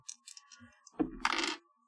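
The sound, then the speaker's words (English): Physical dice rattle with a few light clicks, then clatter across a hard surface in a brief, fairly loud burst of tumbling knocks before settling into quiet, landing on a 5. “I'm gonna roll physical dice.”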